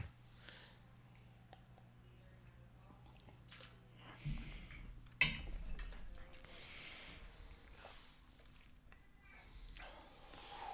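A single bright clink of glasses tapped together in a toast before tasting Old Forester, followed by soft rustling and quiet sipping, with a low steady hum underneath beforehand.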